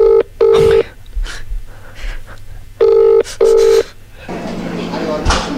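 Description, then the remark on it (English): A phone line's ringback tone from a call to the Beach Cafe in Port Kembla sounds in two double-burst rings, a pause between them, loud and clear. Quiet voices murmur in the gaps, and a rustling, noisy line follows. “Is it ringing? Oh, there it is.”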